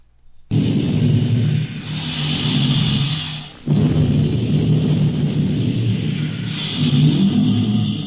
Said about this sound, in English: this sort of breathing, kind of like noise, kind of follows us through the entire film